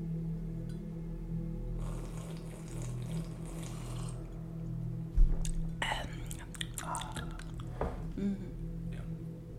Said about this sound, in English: Want to take another sip of your coffee? Ooh, yeah. Before we get going?